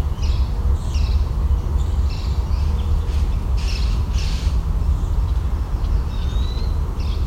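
Harsh squawks of an adult gnatcatcher repeat every second or so over a steady low rumble of outdoor noise, with a thin whistled call near the end; no one speaks.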